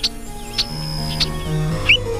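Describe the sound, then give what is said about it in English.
A bobolink sings a series of bright, tinkling notes: three sharp high chirps spaced evenly apart, then a quick rising twitter, clear over a faint low hum. “And that's today's Talkin' Birds featured feathered friend, the bobolink.”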